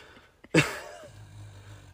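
A single snore: a sudden raspy snort breaks the quiet, then settles into a low, buzzing rumble that drones on steadily at a modest volume until the end.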